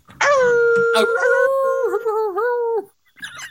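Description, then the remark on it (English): A person lets out one long, loud imitation howl, holding a steady pitch for a couple of seconds before it wobbles and dips, then cuts off. “You're giving it such a weak hypersloth howl”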